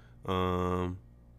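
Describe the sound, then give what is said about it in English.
A single drawn-out cat meow, loud, holding a steady tone for under a second before stopping, with only faint background noise around it. “Hi, kitty cat. What do you want?”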